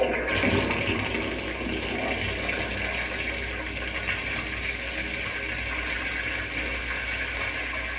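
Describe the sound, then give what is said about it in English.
Water rushes steadily through pipes and spills across a soil model, washing away its topsoil, a continuous hiss and gurgle with faint mechanical rattling underneath, lasting throughout without any talking. “Now I'll turn on the water so it can run through the pipes over the model.”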